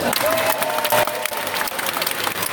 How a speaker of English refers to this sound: I like the way you do the introduction because you name me right at the top and then these people give me a big round of applause and then I get another round of applause for you introduce me at the end.